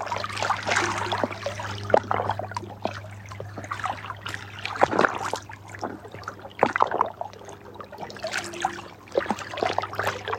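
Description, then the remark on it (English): Water flows and trickles steadily at moderate volume, with small irregular splashes and gurgles throughout, over a constant low hum. No one speaks. “Just allow this water to do the work of forgiveness.”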